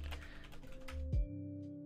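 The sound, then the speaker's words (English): Quick keyboard typing with irregular soft clicks, then a sustained low hum, a dull thunk, and a sharp final knock. “I'm typing to him.”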